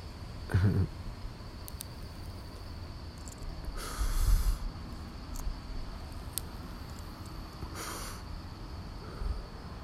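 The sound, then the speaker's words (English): A honey Backwood cigar being smoked: three hissing draws spaced a few seconds apart, each with a soft, faint crackle and a few sharp tiny pops, over a steady low background hum. No one speaks. “Every time I hit that motherfucker, it sound like a log burning.”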